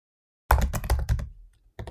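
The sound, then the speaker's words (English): Quick bursts of typing by a technician on a computer keyboard, a flurry of clacky keystrokes that trails off briefly before a couple more taps resume. No voices. “The technician types on his keyboard.”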